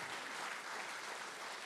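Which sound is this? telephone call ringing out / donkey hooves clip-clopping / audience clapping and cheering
audience clapping and cheering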